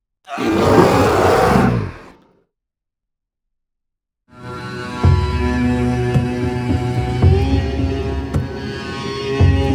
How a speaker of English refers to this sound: Those around the fire heard a resounding, echoing roar.